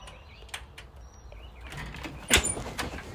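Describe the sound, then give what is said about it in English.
A sliding screen door with a small crack near its handle is opened, rattling and scraping along its track, with a sharp clunk near the end, against a faint outdoor background with a few bird chirps. “I'm about to open my door.”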